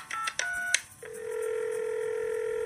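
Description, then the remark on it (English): Two quick electronic touch-tone beeps from a phone keypad, then a steady continuous line tone that holds to the end, clear with no voices, as a phone call is placed to a veterinarian at Pet Doctors in Auckland. “During a phone call, we discussed the calicivirus and the use of K5.”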